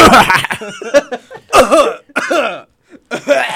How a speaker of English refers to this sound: It won't cough. Nope. Stop pressing that. Okay, listen to me, guys. This is how you cough.